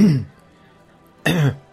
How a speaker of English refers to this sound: he's clearing his throat every time.